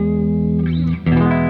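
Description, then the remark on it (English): A sustained, distorted electric guitar chord rings out loudly, then briefly drops out as the pickup selection is switched and returns with a noticeably different, brighter tone; the bridge pickup sounds hot. “I'm hearing you switch and see the massive difference in tone from the different pickup selections.”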